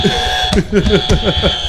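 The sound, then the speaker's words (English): A steady electronic buzzer tone from one of the players' own buzzers in a trivia game drones continuously, loud, while several voices talk and laugh over it in quick, overlapping bursts. “Which also, by the way, everyone has their own buzzers.”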